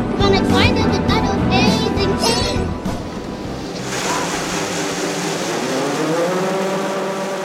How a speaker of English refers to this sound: Once the combine is empty, Joe starts moving slowly through the field to collect another load.